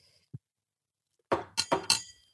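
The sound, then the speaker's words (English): A soft thump, then a quick cluster of about four bright clinks as small shot glasses knock together in a toast, fairly loud, with no talking. “We're doing shots. This is to Carl and Kiso”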